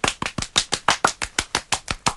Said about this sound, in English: you would be told to clap around the microphone at the end because that creates the impression that there are lots of you in the studio. So do a single clap, just like that, in front of the mic. Okay, and now we're both going to clap around the mic.